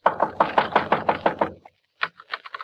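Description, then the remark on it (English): A quick, steady run of about eight loud knocks on the door of a small wooden shed with a cheap padlock on the outside, followed by a short pause and a few scattered, lighter knocks. “Just on a hunch, I go over to the shed and knock.”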